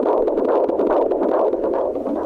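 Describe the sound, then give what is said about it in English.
A recorded heartbeat of an unborn baby girl, a loud, steady, strong whooshing and thumping pulse that repeats quickly and evenly with no voices over it, like a fetal monitor playback. “Here's the heartbeat.”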